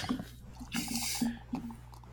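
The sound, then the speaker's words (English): Brown beer pours into a glass, a short fizzy rush of liquid with a few gurgling glugs and drips around it, fairly quiet and with no one speaking. “But anyway, I'm going to pour some.”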